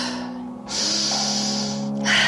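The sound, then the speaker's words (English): Deep, forceful breaths follow one another quickly in a breathing exercise, a loud exhale through the mouth giving way to an inhale and another exhale, rushing, with a low steady hum underneath. “Exhale, inhale, exhale.”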